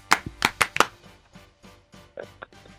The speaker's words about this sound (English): Sorry, had to clap there for a second.